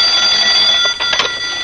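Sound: telephone ringing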